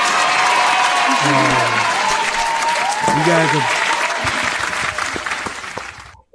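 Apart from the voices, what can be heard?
applause sound effect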